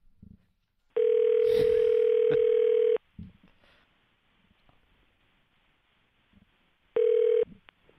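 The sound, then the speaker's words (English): An outgoing phone call rings out: a steady electronic ringback tone sounds for about two seconds, falls silent for several seconds, then starts again, loud and clear over faint background noise. “TD, let's get him on the horn.”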